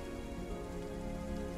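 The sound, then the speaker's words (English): Steady, even rain of a thunderstorm in the evening patters across a surface in a dense hiss of drops, with no thunder or voices, just an unbroken wash of rainfall at moderate volume. “The tranquility of the aftermath of the battle slowly gives way to a thunderous storm later that evening.”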